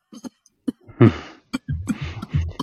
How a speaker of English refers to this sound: Oh, gosh. I hope you're okay over there, man. I know what it's like when you've got a cough and a cold. It sucks, and I can't get to the mute button fast enough.